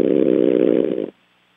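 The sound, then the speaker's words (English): A man snores loudly while asleep on a live radio phone call from El Segundo: one long, rough, buzzing snore lasting about a second, low-pitched and rattling, then abruptly cut off to near silence. No one speaks. “This sounds like he's farting when he's sleeping.”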